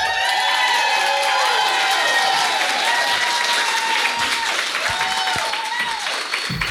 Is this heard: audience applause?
yes